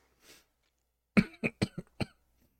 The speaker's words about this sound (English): I'm coughing already.